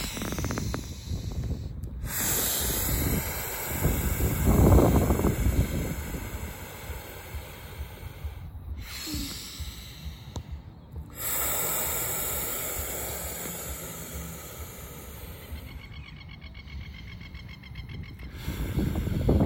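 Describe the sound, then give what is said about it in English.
Slow, deep breaths in a breathing exercise, drawn in and pushed out, several long airy inhales and exhales separated by brief pauses, with no talking. “And let's do a little bit of breathing right now just to finish this.”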